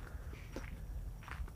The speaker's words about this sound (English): Tonight, I'm walking down a sandy path in Key Largo, just the first key of the Florida Keys.